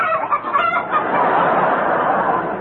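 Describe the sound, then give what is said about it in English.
A hen-like cackle used as a comedy sound effect for a pair of cackling red flannel drawers on The Goon Show: a loud, continuous burst of rapid, scratchy clucks that blur into a dense, steady squawking chatter for a few seconds. “a pair of cackling drawers”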